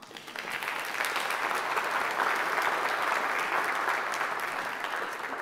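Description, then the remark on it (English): An audience at a church service applauds steadily for several seconds, a dense, even wash of many hands clapping that rises quickly and holds at a full, sustained level without talk. “That's going to make my sermon really long, but you go ahead and you applaud them because I think that's necessary as well.”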